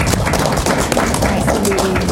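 An audience applauds: a dense, steady wash of many hands clapping that holds at an even, fairly loud level for about two seconds, with a faint voice briefly audible underneath.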